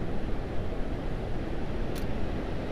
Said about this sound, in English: Little wave that just came through here.